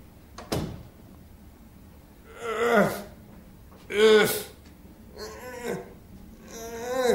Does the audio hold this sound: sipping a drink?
no